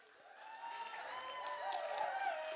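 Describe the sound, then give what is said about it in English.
An audience claps steadily to celebrate a couple's engagement as high whooping cheers rise and waver over the applause, which grows a little louder toward the end. “So they needed the clap and the love from us.”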